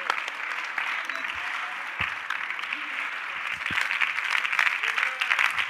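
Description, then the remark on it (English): Sustained applause from a large audience fills the space, a dense wash of many hands clapping that holds steady and swells slightly louder toward the end. “So if you can pause on your clapping, and let me whisper to you.”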